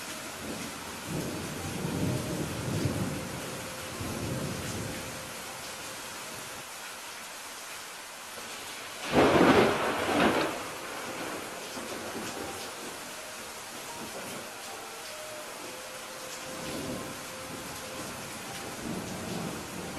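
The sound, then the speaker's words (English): Steady rain hisses throughout while low thunder rumbles come and go, with one louder, sharper crack near the middle. Soft music plays faintly underneath, and no one speaks. “In a moment, we're just going to hear some sound of rain, hopefully.”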